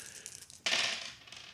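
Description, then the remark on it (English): Dice tumble across a hard tabletop: a few light clicks, then a bright, sharp clatter that rattles on and gradually fades out. No voices are heard. “Oh my god, they are rolling terribly.”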